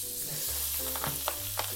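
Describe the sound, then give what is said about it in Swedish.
A small splash of oil and butter sizzle steadily in a frying pan, a dense crackling hiss, with a few brief scraping clinks over a low hum and no talking. “Det är en liten skvätt olja. Och så tar vi smöret.”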